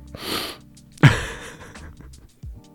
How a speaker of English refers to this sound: Now I'm sniffing. I'm in the mic.